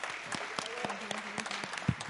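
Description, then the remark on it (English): A church audience at a Sunday morning service claps steadily to welcome a guest, a dense patter of overlapping hand claps with a faint murmur of voices underneath, moderately loud and sustained throughout. “So let's just welcome her with another round of applause.”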